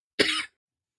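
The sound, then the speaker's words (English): A single short, harsh cough, a burst of breathy noise lasting about a third of a second, followed by silence. “Still coughing over here.”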